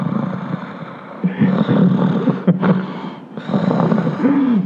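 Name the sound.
imitated heavy snorting breathing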